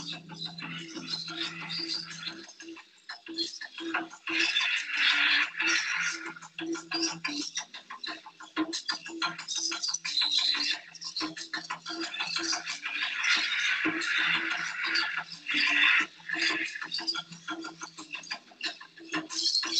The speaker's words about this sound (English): Was that Birds and Monkeys? Yeah, it is. In the background? Birds and Monkeys and Jungle Music.